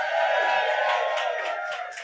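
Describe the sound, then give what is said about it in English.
A gentle smattering of audience applause at the live show Desert Island Dicks in London, mixed with crowd cheering and whoops, holding steady for about two seconds before easing off slightly at the end. “let the gentle smattering of applause warm your heart and calm your mind”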